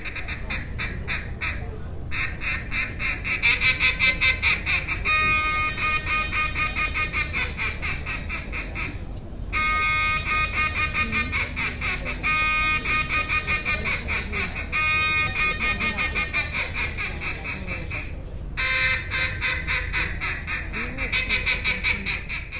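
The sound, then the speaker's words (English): Loud duck calls blown in long, rapid runs of raspy quacks at a world champion duck calling competition during the annual Wings Over Prairie Festival in Stuttgart, with a few brief pauses between sequences, sounding nearly continuous throughout. “Thousands of hunters descended upon the town to eat duck gumbo, buy duck hunting gear, and watch world champion duck calling competitions.”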